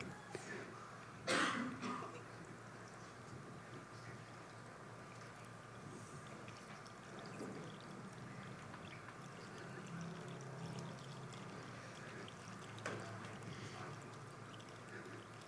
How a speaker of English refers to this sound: Okay. Keep pouring. Is it okay? Okay. Keep pouring. Keep pouring.